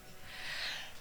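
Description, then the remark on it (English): A single breathy sneeze, heard as a soft, airy hiss of expelled air lasting about a second, fairly quiet, with no talking around it. “Bless you.”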